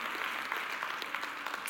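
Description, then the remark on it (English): A church audience claps their hands in faith, a dense, continuous patter of many hands with bright, crisp clicks and no voices standing out above it. “Can we clap our hands in faith today?”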